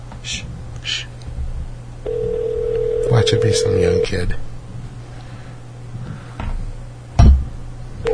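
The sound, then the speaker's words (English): A phone call rings out over a speakerphone: one steady, mid-pitched ring tone lasting about two seconds, with a hushing voice and quiet talk around it. “Did we miss a call from you?”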